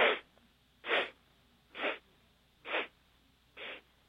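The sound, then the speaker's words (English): Five short, breathy sniffs through the nose taken as little steps of breath in a breathing exercise, evenly spaced about a second apart, each a soft hiss of air with quiet pauses between and no talking. “So like little steps of breath, so little sniffs through the nostrils.”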